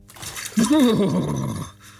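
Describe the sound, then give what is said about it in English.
A glass of ice water is poured over a person's head: a short rush of water splashes down for about a second while the person lets out a strained, wavering gasp over it; the noise then fades to a faint hiss. “Pour this glass of water over your head.”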